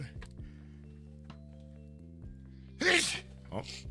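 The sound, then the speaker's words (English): A single sharp sneeze bursts out near the end, followed by a brief softer breathy puff, over a steady low hum with no talking. “So I don't want to sneeze out my blood clots.”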